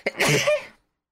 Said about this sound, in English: I'm gonna sneeze.